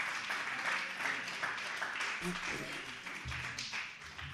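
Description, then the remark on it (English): An audience claps together to thank God in a steady, dense wash of applause, with a low murmur of voices underneath. “Would you clap your hands just for a moment and thank God for that understanding?”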